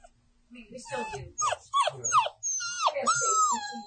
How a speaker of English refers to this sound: A litter of 9 puppies at Juneau Animal Rescue, all named after different Paw Patrol characters, were waiting for their forever homes last week.